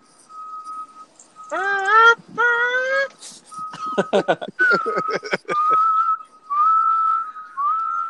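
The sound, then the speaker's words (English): Someone whistles a steady, high-pitched tone in several sustained stretches, imitating a truck's reversing beeper, broken up by short bursts of voiced vocal noise in between. “Just backing up my truck.”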